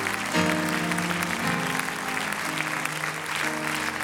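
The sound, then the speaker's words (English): An audience at a church service claps its hands to the Lord in a dense, sustained wash of applause, loud and steady throughout, while a sustained organ-like chord plays underneath and shifts pitch a couple of times. “Why don't you lay your Bibles down, and why don't we just clap our hands to the Lord and thank him for his presence.”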